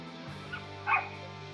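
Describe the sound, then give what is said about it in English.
A small dog, one of the neighbors' four or five dogs across the street, gives a quick, high-pitched yip, preceded by a fainter one, heard at a distance over a steady low background hum. “I hear an adorable puppy.”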